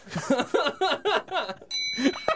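A bright bell rings once near the end, its clear metallic tone sustaining briefly, following a burst of laughter-like vocal sounds.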